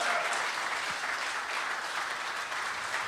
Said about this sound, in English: Can I get a round of applause for Andrew Stone?